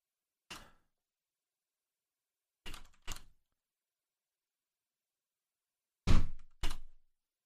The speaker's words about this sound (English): Wow, that door slammed downstairs was so big, we heard it all the way up here. I saw it actually spike. Impressive.